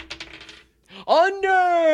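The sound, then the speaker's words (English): Dice clatter and tumble across a hard surface in a quick burst of small, sharp clicks, then settle, the final roll of the day; a voice begins speaking right after. “The final roll, or what I hope is the final roll of the day in 3, 2.”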